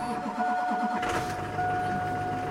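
A diesel truck engine cranks and rumbles to life on a frosty morning as it is started to warm up, while a steady electronic chime tone sounds throughout the short burst.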